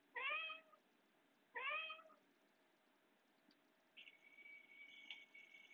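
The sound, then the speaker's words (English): Two clear cat meows, one right after another, fairly loud, a cat meowing for cat food, followed by a quieter, steady high-pitched tone that holds through the end with no talking. “In separate bite-sized morsels, the cat food other cats get by simply meowing for it.”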